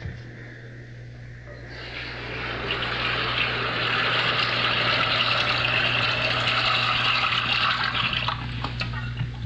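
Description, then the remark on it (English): Water gushes steadily from a tap into a tub being filled for a hot bath, a loud, continuous rushing that starts after a brief pause and runs unbroken over a low background hum. “I'm going to boil some water and fill the tub.”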